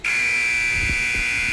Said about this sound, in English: I couldn't wait to hit that buzzer. That's one of my favorite. That's one of the favorite things of the whole show, right?